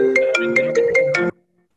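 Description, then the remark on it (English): A phone ringtone plays a quick, bright melodic phrase with regular pulsing notes for just over a second, then cuts off abruptly into silence. It is fairly loud, with no talking. “We're busy today, apparently. Wow. I turned our notifications off too.”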